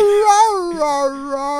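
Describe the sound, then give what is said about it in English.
A human voice imitates a dog whining for a treat: a sustained, nasal, high-pitched whimper that wavers and then settles slightly lower, held continuously for under two seconds, fairly loud. “It's like when my dog wants a treat.”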